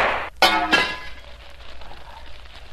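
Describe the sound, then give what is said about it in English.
A lamp breaks: a sharp crash of breaking glass, with a second bright impact and ringing, tinkling shards that fade into a low, lingering hiss. “I've broken the lamp, Shadow.”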